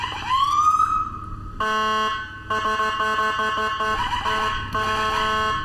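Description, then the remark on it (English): Police and fire truck sirens, responding to a fire out back, blare loudly: a rising wail gives way to a harsh, rapidly pulsing electronic tone that chops on and off in bursts, with no voices. “That's cops and fire right there.”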